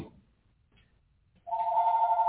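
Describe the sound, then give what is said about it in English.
After a second of near silence, a second telephone abruptly starts ringing loudly, with a steady electronic trill that continues to the end. “Oh, stop. This is that other phone.”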